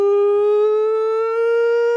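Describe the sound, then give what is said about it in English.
A tornado warning siren holds one loud, steady wailing tone for the whole stretch, its pitch creeping slightly upward, with no voices over it. “No, it's the nonsense the siren.”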